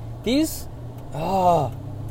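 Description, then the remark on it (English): A steady low rumble of road noise inside a car being driven while merging onto a freeway, with two short voiced exclamations from the driver at another driver rising over the hum. “This is why I should not record when I'm driving.”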